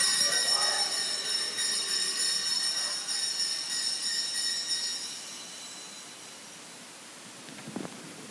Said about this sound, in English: It's good for us somber and solemn Anglicans to get the bells out, the noisemakers out, and shake them, isn't it?